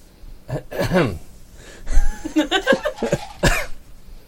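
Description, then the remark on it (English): Several harsh coughs from an itchy throat burst out in an uneven series, separated by short pauses and raspy throat sounds, with no talking. “I'm sorry, are you experiencing some sort of illness? You seem to be coughing quite a bit.”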